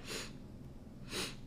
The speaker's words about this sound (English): I do apologize. I'm probably going to be sniffling. My allergies are really acting up today.